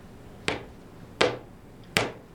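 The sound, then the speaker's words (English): Three sharp, hard taps on cemented flagstones in a flagstone passage in the 16th-century part of a house, evenly spaced and slow, each a crisp knock with a brief ringing tail and no hollow sound, heard alone with no talking. “What are you tapping the stones for?”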